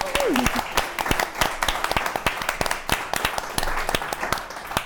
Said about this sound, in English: And a final thank you to our audience. I think you should all give yourselves another round of applause. Why not?